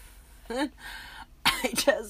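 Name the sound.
cough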